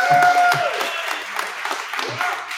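An audience claps to vote for the best hair among people on a couch, a dense, steady burst of applause lasting a couple of seconds, mixed with crowd cheering and a brief high whistle near the start.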